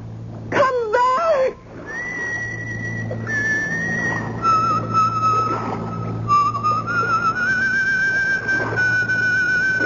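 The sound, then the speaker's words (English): An apparition of a pipe-smoking woman with a cutlass at her belt whistles a slow tune in long, sustained notes that step gently up and down, preceded by a few quick swooping whistles, over a steady low background hum. “A whistling, pipe-smoking lady with a cutlass at her belt.”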